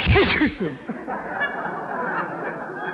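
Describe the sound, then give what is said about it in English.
A sudden loud voiced sneeze bursts out in an office at the start, quick and sharp with a rising-then-falling pitch, then fades into a steady, hissy background murmur. “Bless you.”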